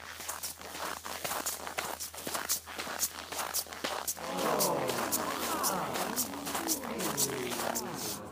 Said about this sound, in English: This is what Dr. Martens against -9 degrees Celsius snow sound like.